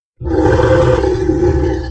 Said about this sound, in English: And from behind him came a deep, rumbling growl. A growl that was echoed an instant later from both sides.